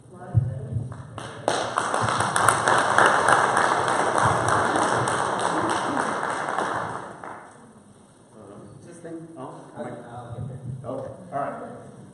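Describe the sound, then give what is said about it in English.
A crowd claps and applauds steadily for the mothers present for several seconds, a dense wash of hand claps that then fades away as a single voice begins speaking. “And I just want to say applause to all the mothers here, and especially to my mother, and thank you.”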